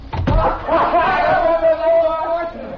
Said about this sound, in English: close the door.